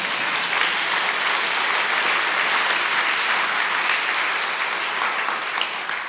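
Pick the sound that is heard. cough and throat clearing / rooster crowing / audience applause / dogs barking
audience applause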